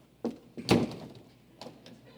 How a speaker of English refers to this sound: But they slam the door, they're done, physically. It's like emotionally, relationally, it's like it's done, right?